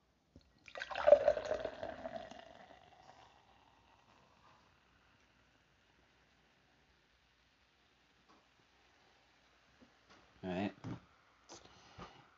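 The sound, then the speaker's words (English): Pineapple peach kombucha from Kavita Master Brew Kombucha pours into a glass in a brief splashing stream that fizzes and fades over a couple of seconds, followed by a long quiet stretch and a few short handling noises. “Do a little pour.”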